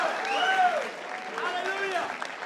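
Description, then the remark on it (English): An audience claps steadily for about two and a half seconds as a hand clap of praise to the Lord, a dense wash of many hands, with raised voices calling out over the applause. “Come on, somebody. Give Him a hand clap of praise.”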